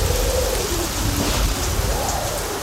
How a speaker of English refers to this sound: Everything you own is under one roof. The same roof that's getting bludgeoned by hail. When the storm subsides, you might want to call us.